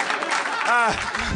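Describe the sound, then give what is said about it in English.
A steady wash of audience applause fills the short clip, with a voice briefly rising in pitch and calling out over the clapping partway through. “You should applaud.”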